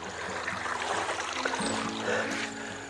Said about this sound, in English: All right, so I'm just crossing the bed of a stream here. You can probably hear the water running. So there is water in these mountains